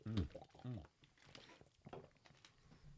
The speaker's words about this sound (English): Y'all are just guzzling. We're dehydrated.